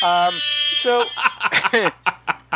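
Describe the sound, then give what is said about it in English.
A voice imitates a Jamaican air horn, sounded for Bierce, with a couple of loud, buzzy, sustained blasts, followed by bursts of chuckling laughter and scattered talk. “Yeah, the Jamaican air horn for Bierce.”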